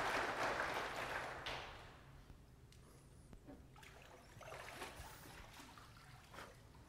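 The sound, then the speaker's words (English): A crowd at a worship service at Mountain View Baptist Church claps in a dense, crackling burst that is loudest at first, then thins into softer, scattered applause that carries on for several seconds. No one speaks. “All right, now if you would give her a round of applause.”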